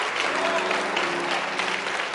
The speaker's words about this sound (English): Let's get the Lord a hand clap for him. Praise Jesus.